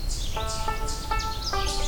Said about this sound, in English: Okay, this chipmunk's really disruptive, so I'm gonna see if I can get up the hill and closer to this Canada warbler.